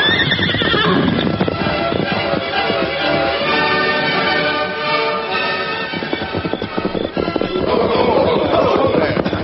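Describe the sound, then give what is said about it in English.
A horse with a rider whinnies loudly, with a steady clatter of hooves clip-clopping underneath, and another shrill neigh rises near the end. There is no talking. “Get off your horse.”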